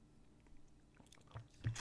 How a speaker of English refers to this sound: In the end, we connect over coffee, and it's a wonderful part of our culture. So let's have a sip.